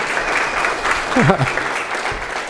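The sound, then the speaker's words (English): An audience claps steadily for the whole stretch, a dense, even patter of many hands, while a brief voice briefly rises above it midway through. “No clap for that?”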